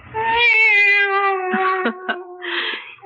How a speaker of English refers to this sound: It's the cat. She's back.